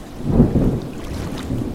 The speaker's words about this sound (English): Imagine two men. Let's call them Harry and Carl on a boat. The mast is struck by lightning.